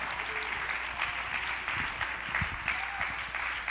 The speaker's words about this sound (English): Oh, come on, clap your hands unto the Lord if you believe that today.